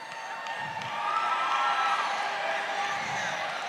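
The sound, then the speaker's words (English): An audience greeting one another: a large crowd of people talking and calling out to one another all at once, a dense, lively babble of overlapping voices with occasional whoops, steady and fairly loud throughout. “Would you, just a quick moment here, could you greet somebody around you like your breakthrough depended on your greeting?”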